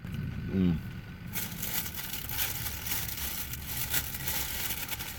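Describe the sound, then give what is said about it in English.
A brief hummed murmur, then steady crunchy chewing of a chili burger with chips and onions: crackly, brittle bites and grinding repeating irregularly for several seconds at moderate loudness. “Onions are crunchy. So are the chips.”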